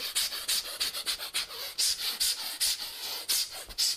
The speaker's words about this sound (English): It's kind of three stages of this, isn't it? The first stage is exhaling wildly whilst headbanging.